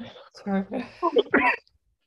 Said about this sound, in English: So, excuse me, I just have to cough for a second.